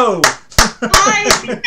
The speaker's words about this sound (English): I love clapping to myself.